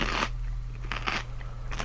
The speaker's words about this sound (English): The warm blood drips down my chin as I bite into my meal.